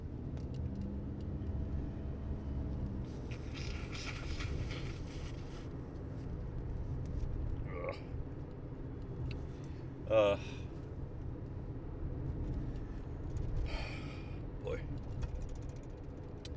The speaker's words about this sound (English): I have to sneeze, sorry. My allergies are going crazy. It's not good. Not good at all.